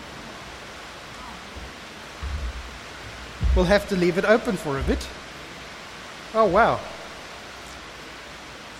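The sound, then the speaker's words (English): Steady, even hiss of rain falling both inside and outside on a blustery day runs through the whole clip, with no distinct drips standing out. A couple of voices speak briefly over it, one giving a short exclamation. “It is raining, inside and out.”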